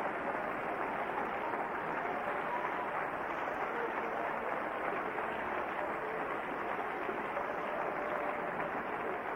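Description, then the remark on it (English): A church audience claps to the Lord during a 1997 service, a dense, steady wash of many hands with no pauses, at a consistent loudness from start to finish. “Clap your hands to the Lord if you believe it with me tonight.”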